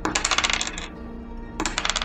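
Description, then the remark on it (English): Coins rattle and slide inside a heavy metal box from the bottom drawer of a desk in two jangly bursts with a short quiet pause between them, bright metallic clinking with no voices. “It had some heft to it, and he could hear coins sliding around inside.”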